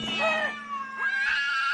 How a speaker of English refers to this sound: But the cat did not understand what he meant to do, and flew in his face, spitting and scratching.